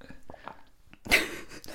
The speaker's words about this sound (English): Anyway, if anyone out there agrees with me, if you find it hard not to slurp hot drinks, comment down below, okay?